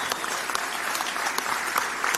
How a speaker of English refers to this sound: Finally. The applause I've been waiting so long for.